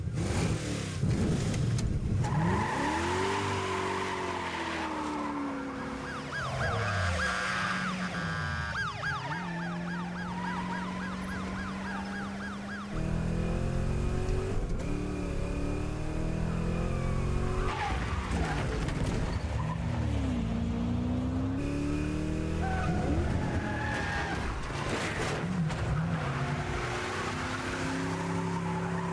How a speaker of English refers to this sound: Yeah, see, that kind of stuff right there. The fact that he didn't just make that turn perfectly is what makes this car chase, like, good. Makes it believable.